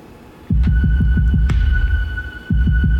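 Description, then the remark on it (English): A loud, rapid heartbeat-like throbbing of deep, muffled thumps comes in two bursts, pulsing steadily over a low hum with a faint, constant high-pitched tone. “God, listen to your heartbeat.”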